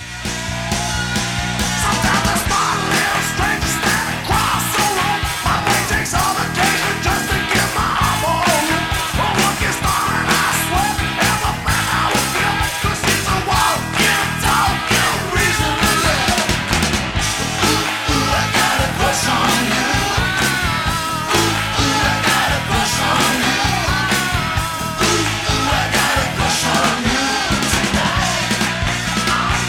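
A loud, dense rock song plays continuously, with driving drums and distorted guitars under a raw, screamed lead vocal that stays high in the mix throughout.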